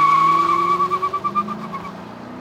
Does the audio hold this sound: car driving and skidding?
yes